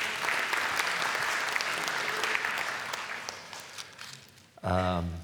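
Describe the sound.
An audience claps steadily in a broad, dense wash of applause that gradually thins and softens, then a voice begins speaking loudly just as the clapping fades out.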